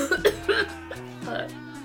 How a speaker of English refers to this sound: One of them's having a coughing fit. You think she might be dying of swamp gases.